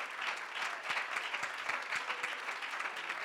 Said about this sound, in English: Give the Lord a hand and clap of praise.